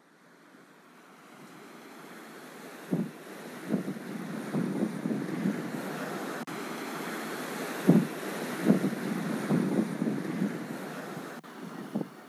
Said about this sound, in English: I look out at the lake's currents. Currently pulsing waves overcome the concrete, caging it in.